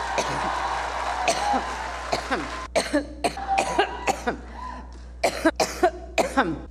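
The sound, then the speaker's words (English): A violent coughing fit from Hillary Clinton: a rapid string of harsh, hacking coughs in uneven bursts, fairly loud, following a stretch of muffled voices and background murmur. “She'd eventually ditched the double vision glasses, but her violent coughing fits continued.”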